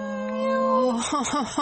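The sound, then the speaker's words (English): A drawn-out vocal tone followed by a few quick, falling meows, fairly loud, sounding like a person imitating a kitten's cries rather than a real animal. “And on the inside, from the inside of the box, I heard meow. Meow.”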